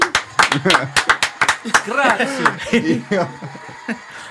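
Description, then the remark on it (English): A burst of sharp, rapid clapping opens the moment as a guest is introduced, then gives way to rising whoops, cheering voices and a little laughter that carry on at a lively, moderate level. “I like the crowd noises in the back.”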